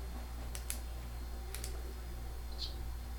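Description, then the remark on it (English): A few soft keyboard clicks arrive in two quick pairs, sparse and fairly faint, over a steady low background hum with no one speaking. “Well, no, just tell me when you're done typing.”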